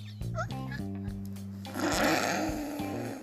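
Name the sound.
cat meowing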